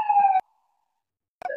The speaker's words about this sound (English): Can you all hear the sirens? Yeah. Give me a second.